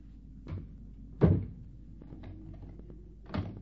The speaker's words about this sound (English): You locked the door after your sister? Yes, I did.